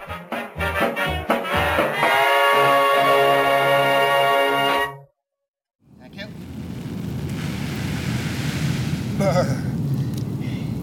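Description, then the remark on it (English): Rain beats steadily against a window, a dense, even hiss that continues without pause. Before it, a few seconds of tonal, musical sound end in a brief silence. “The rain beating against your window.”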